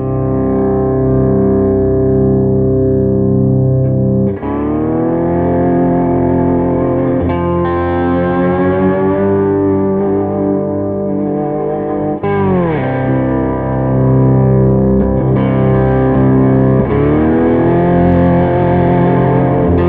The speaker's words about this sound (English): but you can play it down on this low neck too, on the C6 neck, and get like just really almost like deep fuzz kind of vibes.